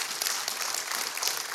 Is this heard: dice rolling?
no